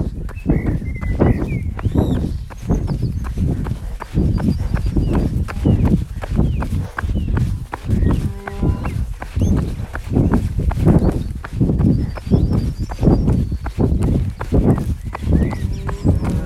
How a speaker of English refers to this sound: Nice sounds of countryside there. All the cows and the birds.